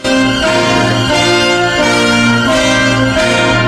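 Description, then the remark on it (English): A loud, lush holiday song from a 1966 Christmas album, with bells ringing over full orchestral backing, sustained chords changing every second or so, with no talking over it. “It's from 1966. It's called ….”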